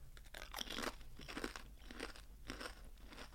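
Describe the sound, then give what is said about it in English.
Loud, crisp crunching as someone chews pork scratchings, with several sharp bursts of crackle in an uneven rhythm and no talking over them. “I do love a pork scratching.”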